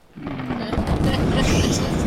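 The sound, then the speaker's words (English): A loud, booming thunder sound effect erupts after a brief quiet start and rolls on as a dense, sustained rumble with crackling texture through the end. “He didn't catch a lightning bolt.”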